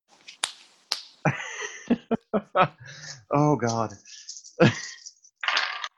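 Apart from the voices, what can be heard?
dice being rolled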